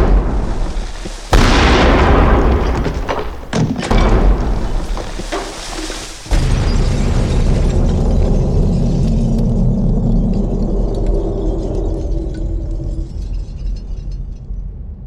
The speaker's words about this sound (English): Just nonstop action and excitement. I'll add some explosions.